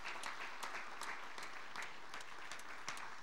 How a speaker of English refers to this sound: And so I'd just like you to give a round of applause